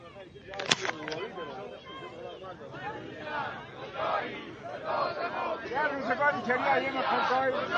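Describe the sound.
A large crowd of people in Khorramabad, Iran, shouts protest chants together, a dense mass of raised voices that grows steadily louder, with a sharp, brief bang-like burst near the start.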